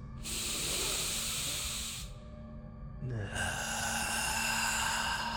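Two long, slow focused breaths, one drawn in and one pushed out, each an airy, hissing rush, separated by a brief pause, with no talking.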